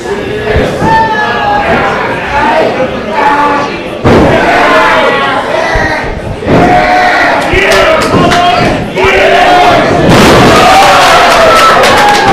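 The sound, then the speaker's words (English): A loud wrestling crowd cheers and shouts nonstop as wrestler Apollo works on Zach Thomas of Midwest Scum, IPW Tag Team Champions, many voices overlapping in a dense roar with abrupt swells in volume and occasional sharp thuds underneath. “As you can tell by the crowd, Apollo's working on Zach right now.”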